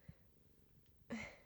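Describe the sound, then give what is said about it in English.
A cat sitting on a person's lap purrs softly and steadily with a low, rhythmic rumble. Near the end a sudden louder, breathy burst cuts in. “My cat has very nice purse.”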